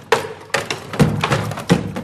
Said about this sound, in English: A second instrument in the room called Zapatelo was inspired by Leonardo da Vinci's design for a mechanical hammer. Galindo turns a lever, which makes a boot and glove smack against a tire.